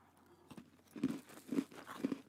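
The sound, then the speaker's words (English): Chewing on a buttercream-iced cookie with a slight crunch, three or four rhythmic bites and mouth sounds repeating about every half second, fairly quiet with no talking. “Oh, you're just gonna hear me chew.”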